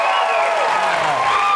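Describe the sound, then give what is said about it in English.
Steady studio audience applause mixed with cheering and whoops on a talk show as Mark Ruffalo is welcomed, a dense, continuous wash of clapping at a loud, even level throughout, with a few excited voices rising above it. “That would be creepy if they just followed you home cheering as you're just walking home.”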